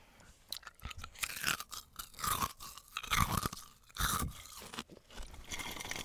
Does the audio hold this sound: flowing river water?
no